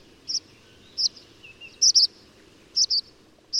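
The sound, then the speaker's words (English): Tree swallow calls: short, high, liquid chirps given singly and in quick pairs, about seven notes spaced irregularly over a few seconds, clear above a faint low background hiss. No one speaks. “Welcome tree swallows to your yard next spring with a nest box.”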